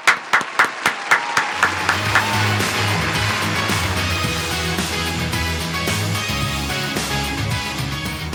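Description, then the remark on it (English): An audience breaks into applause that starts as a few rhythmic claps and quickly swells into a loud, sustained, dense wash of clapping with a low rumbling undertone, no voices standing out. “we just want to give a massive, massive round of applause from everybody”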